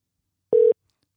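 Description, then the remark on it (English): A single brief, steady electronic tone of an outgoing call to Industry Customs ringing through a phone speaker, clear and fairly loud, surrounded by silence with no one talking. “I don't know if he'll pick up. Come on, Nick. Come through, brother.”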